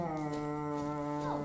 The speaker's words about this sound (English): Oh, what's that? Just a foghorn out in the bay. Fog? We get it almost every night in this kind of weather.